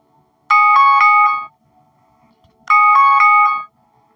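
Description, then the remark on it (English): An alarm set for the previous week goes off in two loud bursts, each about a second of rapid, pulsing high-pitched electronic tones, with a brief quiet pause between them and no talking. “That's an alarm for whatever. It was for last week. You can't mute out alarms.”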